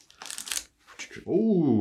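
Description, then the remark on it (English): Crisp crinkling of plastic packaging in two short bursts as a new Yako pen box is opened for the first time, followed by a person starting to speak as the rustling stops. “We're going to make a lot of crinkling noise. I've never opened a pen box before.”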